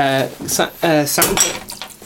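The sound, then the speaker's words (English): A drinking glass breaks with a few sharp, bright clattering bursts, mixed in with loud voiced exclamations from people. “I legit smashed the glass.”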